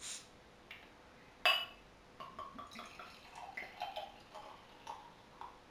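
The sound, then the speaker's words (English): A quiet glassy clink, then Zoet en zalig Apfelstrudel Quadruple beer (9.3%) from Dutch brewery Brewerij De Molen glugs and trickles from a 330ml bottle into a glass in a stream of small bubbling, gurgling pulses, pouring very dark brown with a foamy tan head. No talking. “So let's get that into my glass.”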